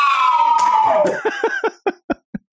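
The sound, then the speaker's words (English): A man gives a loud, falling whoop that sweeps downward, then claps his hands roughly eight times, sharp claps that spread apart and grow quieter toward the end. “That was his hands. That was a clap and a woo.”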